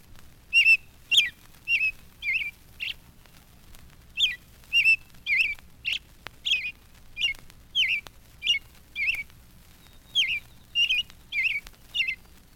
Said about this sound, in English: And here is Perky, the Pekin nightingale, or Japanese robin. His habitat is western China. Perky sounds very much like our own native robin.